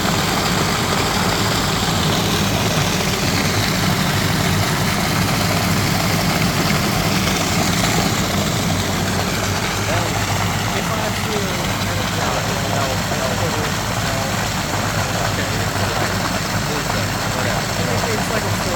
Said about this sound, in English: Dumping water into the pool. Yeah. 3 semi trucks of water. Don't know how many gallons.